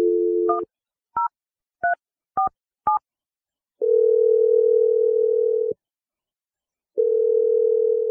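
A steady dial tone cuts off into a quick series of short touch-tone beeps, each a paired pitch, then long ringback tones pulse with pauses between, as the radio show Brooke and Jeffrey in the Morning dials a woman's phone number. No voices are heard.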